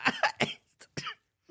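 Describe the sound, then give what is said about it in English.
A raspy run of dry coughs from a dry throat while laughing: three quick hacks back to back, a pause, then a couple more scattered bursts, with no talking. “It's so hard to laugh right now because I'm coughing with my dry-ass throat.”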